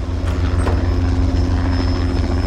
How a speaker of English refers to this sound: That's not a plane. Tomato, tomato, what is? It's a helicopter